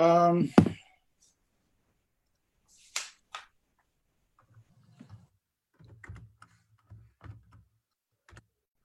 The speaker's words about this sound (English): Is it a calculator I'm hearing? No, it's my keyboard. Yeah. I'm trying to figure out the numbers. I'm calculating all you guys' cap hits here.